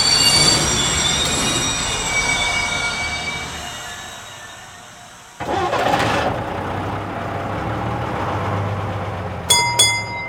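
A train rumbles steadily along the rails with high metallic wheel squeal, briefly dropping away before the clatter resumes, ending with a few sharp clanks. No one speaks.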